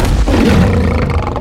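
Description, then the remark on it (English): A loud, guttural roar of a monster with the body of a giant winged lion, covered in shaggy fur and spines, pouncing in ambush; deep and lion-like with a rough growling edge, sustained for a second and a half with no voices. “Dropping down from the sheer cliff face above you, a monster the likes of which you've never seen pounces in ambush. Its body is that of a giant lion and covered in stained shaggy fur and shot through with 8-inch spines,”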